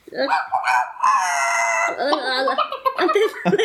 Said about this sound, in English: Do they always make that sound? That's hilarious. Right, those ones sound strange, whatever that clucking noise is, but that one's just freaking me out with the constant screaming.